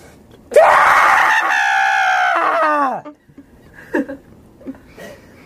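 A single loud, anguished scream held for a couple of seconds, its strained pitch sagging as it trails off, followed by a few faint breathy sounds in near quiet.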